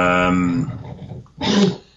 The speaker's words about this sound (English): It's the dog. We hear him over there. Yeah. He's not like being away from me since I got out of hospital. He likes to be around me.